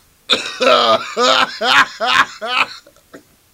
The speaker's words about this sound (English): What is that? Oh, man, it's my laugh and a cough at the same time.